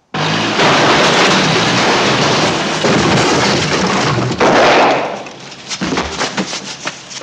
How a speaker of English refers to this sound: The thug, played by actor Stuart Robinson, tried to kill Kersey by driving a forklift truck through a wall of wooden crates.